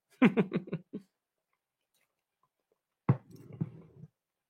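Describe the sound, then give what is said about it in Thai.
Chewing of food: a quick run of five or six moist, rhythmic bites, a few seconds of quiet, then a longer squishy stretch of chewing, with no talking. “ผมควรจะเคี้ยวให้หมดก่อนนะครับ”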